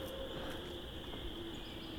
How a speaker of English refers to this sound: Yeah, 2 great horned owls now. Both distant though. It's a male and a female great horned owl.